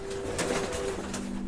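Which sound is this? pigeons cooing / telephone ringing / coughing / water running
pigeons cooing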